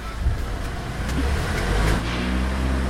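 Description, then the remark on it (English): A car engine rumbles steadily, then revs with its pitch climbing in the last second, punctuated by a couple of brief clunks. No one speaks. The car has just hit a bollard in Rotherhithe and knocked out its light. “He's hit the bollard.”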